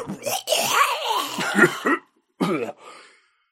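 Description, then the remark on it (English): A voice imitates a harsh, raspy smoker's cough: a run of rough, phlegmy hacking bursts, a brief pause, then a few more wheezy coughs trailing off. “Until, like, I don't know, like, they've got... smoker's coughs.”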